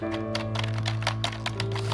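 Quick, irregular clacking of keys on a computer keyboard, several taps in a row over a steady low electrical hum, with no one speaking.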